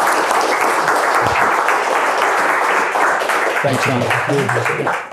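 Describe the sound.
Sustained audience applause for a speaker at an IWP school event, a dense wash of many hands clapping at steady loudness throughout, with a few voices faintly murmuring underneath toward the end.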